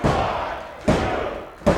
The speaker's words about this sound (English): And a standing ovation from this Warrior crowd, including both of us.